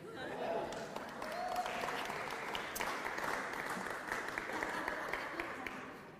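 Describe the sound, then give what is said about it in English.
A church audience applauds steadily for several seconds, a dense, even patter of many hands clapping at once with a few voices murmuring underneath. “I don't clap when you bring your Bible.”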